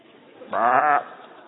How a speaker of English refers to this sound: He brings a goat.